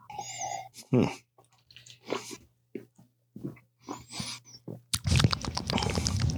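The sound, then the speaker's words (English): Quiet sips and slurps of Coors Banquet beer from a glass, a few short wet bursts with pauses between, ending in a longer airy exhale or gulp. “I'm not quite getting banana on it, but let's take my second sip here.”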